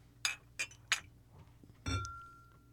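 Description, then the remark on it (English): Glasses of bourbon clink together in a toast: three quick, bright taps, then a fuller clink that leaves a thin ringing tone hanging over a low background hum. “Close it out with a drink and a toast.”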